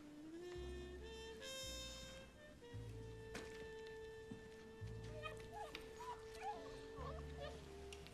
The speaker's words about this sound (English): Oh, you're so cute. You didn't tell me you had a puppy. Oh, my God, he's adorable.